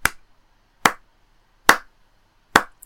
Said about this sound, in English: Some clapping.